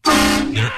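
A single loud, blaring air horn blast, harsh with a rich buzzing tone, lasting under a second and wavering slightly in pitch near the end.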